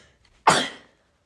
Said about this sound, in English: Oh, hold on. I need to sneeze.